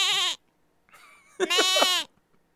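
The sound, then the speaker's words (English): A goat bleating sound effect: three bleats in quick succession, a short loud cry, a fainter wavering one, then a long strained bleat, clear with no talk. “He is the GOAT of all GOATs. GOAT talk!”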